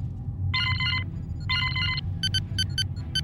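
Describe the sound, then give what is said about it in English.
An incoming distress call alert chimes from a communication panel: two sustained, bright electronic tones followed by a quick run of short, rapid beeps, all over a steady low rumbling hum. “Captain, I'm picking up a distress call.”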